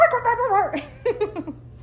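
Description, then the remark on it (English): A small dog barks outdoors, starting with a drawn-out, wavering yelp and then a quick run of four short, high yips, over a low steady hum. “She doesn't even have an annoying bark.”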